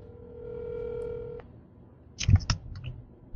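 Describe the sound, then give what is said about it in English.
A telephone's electronic tone sounds steadily for over a second through a speakerphone, then stops, followed by a quick cluster of sharp clicks and taps. No one speaks. “I do know how to use a phone and speaker.”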